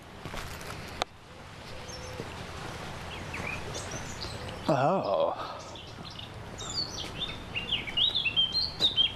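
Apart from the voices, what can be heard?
bird song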